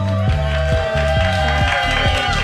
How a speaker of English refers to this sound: As you can hear... So awesome. A great crowd already.